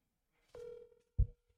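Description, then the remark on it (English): A phone call's ringback tone plays, a single steady electronic tone held for about a second, fairly quiet, with a soft low thump partway through and no voices. “Are you gonna call Mark? Yeah, I'm calling right now.”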